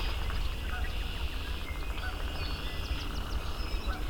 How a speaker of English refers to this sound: Swamp sparrow.